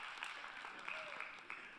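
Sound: audience clapping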